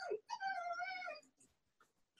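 A hungry female dog lets out an unhappy, drawn-out whine: one high, wavering cry lasting about a second, just after a short yelp, then quiet.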